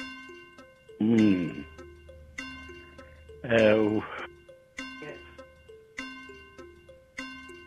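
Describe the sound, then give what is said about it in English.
A 15-second quiz countdown timer ticks steadily, about twice per second, over a sustained tonal music bed, with two short bursts of vocal sound breaking in near the start and middle. “15 seconds of the clock.”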